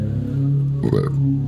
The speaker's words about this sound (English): That's the first time I've apologized for burping.